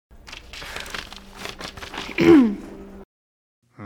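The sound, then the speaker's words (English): Crackling crinkles of paper being crumpled in a steady run of irregular bursts for about three seconds, growing louder near the end before stopping abruptly. “Paper. Paper.”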